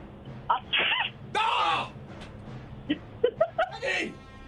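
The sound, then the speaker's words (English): A person fakes a sneeze with their voice: a rising vocal buildup, then a loud, breathy "choo" burst, followed by several short, higher-pitched vocal yelps and a final strained squeal. “Every one of them I would have thought was a sneeze.”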